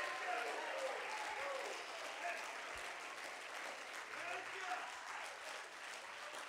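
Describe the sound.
A church audience claps steadily in dense, continuous applause as a hand clap of praise to God, filling the space for several seconds, with faint voices mixed in beneath the clapping.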